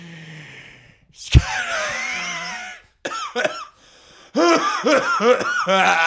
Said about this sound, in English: Oh, no. That was a fake cough that turned into a real cough. I gotta get my puffer.